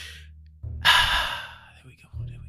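Loud breaths during a breathing exercise: a brief airy exhale, a pause, then a long deep rush of breath that slowly fades, with a faint low hum in the background.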